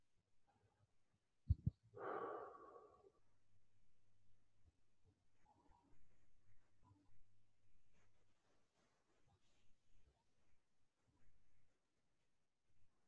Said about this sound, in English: That is just straight up relaxation or parasympathetic breathing. It can be a wonderful way to start any sitting because the deep inhalations help you align your spine